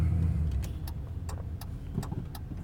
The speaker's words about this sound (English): Come on, buddy. Sorry. Traffic.